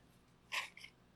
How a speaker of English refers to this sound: Excuse me. We're getting so personal on the show. I'm even blowing my nose.